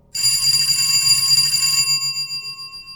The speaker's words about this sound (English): 20 minutes later, the phone rings.